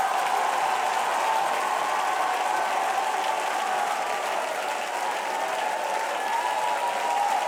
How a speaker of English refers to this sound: And we need everybody in the church to be the church. And if you're ready to be the church, you ought to clap your hands and shout unto God with a great shout.